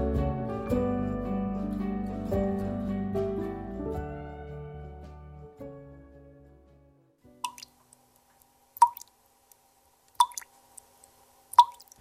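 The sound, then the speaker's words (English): Music fades out, then maple sap drips slowly and steadily in a sugar bush in rural Quebec, a few distinct plinks spaced about a second and a half apart in otherwise quiet surroundings. “Imagine sap dripping in a sugar bush in rural Quebec.”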